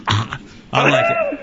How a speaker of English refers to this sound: You've already got – you're practicing the cough. You know, I can't make it.